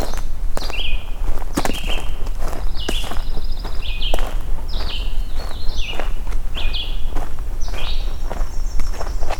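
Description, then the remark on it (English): Steady footsteps crunch along outdoors at an even walking pace as a person walks past a red-eyed vireo, fairly loud, while high, thin birdsong chirps repeatedly in the background. “Alright, I'm gonna walk past this red-eyed vireo and let's go listen to this magnolia warbler.”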